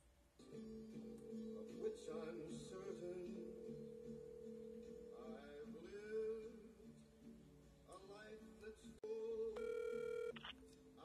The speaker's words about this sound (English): But let's see if we can get my mom on the phone. Let's see if she picks up real quick. Let's see if that happens.